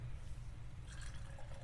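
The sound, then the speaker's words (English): Cider pours into a glass over a low, steady rumble, turning into a brighter, splashy trickle whose pitch rises as the glass fills. Quiet, with no talking. “We'll open it up and pour away.”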